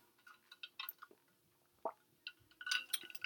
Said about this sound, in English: Excuse me, I got to take a sip of water.